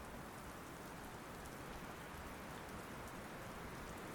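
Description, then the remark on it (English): Steady, fine drizzle patters evenly on surfaces under dark grey clouds, a soft continuous hiss with faint flickers of drops and a low rumbling undertone of gusty wind, no voices. “There is a little drizzle in the air, and a gusty breeze makes it feel more like proper rain.”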